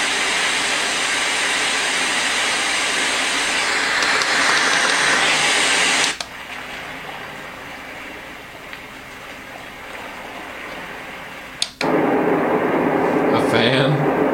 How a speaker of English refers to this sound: That's a powerful fan. That's not a house fan. That's a industrial fan right there.